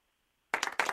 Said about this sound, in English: Hey, Ohio Sam, throw me a big old clapping button.